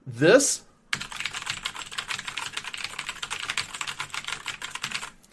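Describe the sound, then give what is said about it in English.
Rapid, continuous clacking of keys on a clicky mechanical keyboard, fairly loud, with dense overlapping clicks after a brief vocal sound at the start. “This doesn't sound good over the mic. It's very clicky.”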